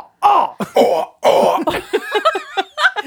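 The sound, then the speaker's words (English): A person imitates a cat hacking up a hairball: a loud run of raspy gagging and retching bursts, rising and choppy, with no other talk. “Sounds like a crusty my cat coughing up a hairball and you choking on a dick.”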